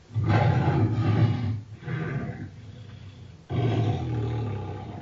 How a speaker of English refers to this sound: That was a lion, a tiger, and a bear. Oh my. That was predictable.